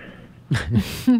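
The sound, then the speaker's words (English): A single sneeze: a short sharp intake followed by a loud, breathy burst of noise, then a voice starts speaking right after. “God bless you.”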